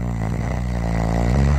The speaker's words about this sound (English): And then I began to discern a long, low, rumbling sound, like an engine idling in both of my ears. It took a moment to figure out what it was. It was me. I was snoring.